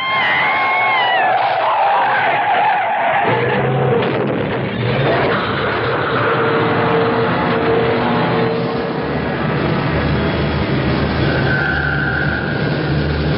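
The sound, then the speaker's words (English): A car whose brakes have failed skids out of control, high squealing tire screeches giving way to a loud, continuous roaring rumble of engine and road noise that stays intense throughout. “The brakes are gone.”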